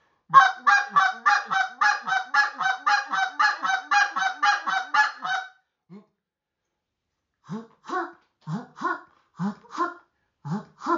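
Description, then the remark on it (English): A goose call blown to demonstrate the double cluck, with more air and higher voice inflection on the second note: a rapid run of short, punchy clucks for several seconds, then after a pause a slower series of separate, paired honking notes, clear. “Which is another version of the double cluck. That's on the old man, on the delta.”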